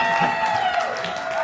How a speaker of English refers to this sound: All right, ladies and gentlemen, a round of applause for this extrovert. There we go.